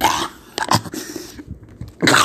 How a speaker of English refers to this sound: He coughs up some blood, but that's not enough to stop him.